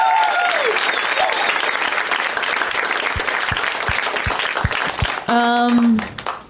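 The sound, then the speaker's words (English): Loud, sustained audience applause for the comics who performed at a comedy show tonight, a dense wash of many hands clapping, with a few high whistles early on and a brief whooping cheer rising over it near the end. “First of all, round of applause one more time for all the comics who came out tonight.”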